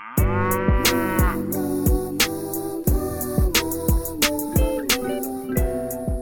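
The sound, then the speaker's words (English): A bouncy novelty pop song with mooing, cow-like vocal sounds over punchy, steady drum hits and sustained synth tones, playing loud and up front with no talking. “she really came on the scene in 2018 with her song …, which was kind of a joke song where she dressed as a cow”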